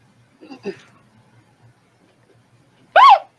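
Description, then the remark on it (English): A voice imitates a dolphin's echolocation with one loud, high, squeaky squeal that rises and falls near the end, after a couple of short, softer vocal sounds and a quiet pause. “Give me the sweet dolphin sound. Tell me what your echolocation sounds like.”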